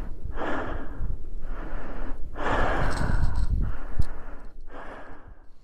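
Panicked, heavy breathing of a person filming a snowmobile sliding backwards and its rider disappearing under a cloud of snow: about five loud, ragged breaths in quick succession, each a harsh rush of air, with no talking.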